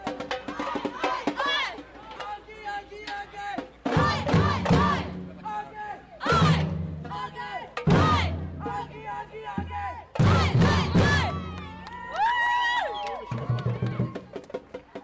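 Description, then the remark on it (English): Heavy drums pound in loud bursts as Gaels bang their drums on the city walls of Derry, while a large crowd shouts and cheers outdoors, many voices overlapping in a lively, chanting din. “has come to Derry for the first time and the Gaels are banging their drums on the city walls.”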